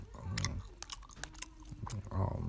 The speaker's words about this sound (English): I'm chewing too hard.